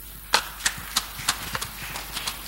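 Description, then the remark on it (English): Sparse, half-hearted clapping from a church audience: a handful of scattered claps at an uneven, slow rhythm, fairly soft and trailing off over a couple of seconds, with no voices. “You see, they're clapping for you half-half. It's a political clap they're giving you.”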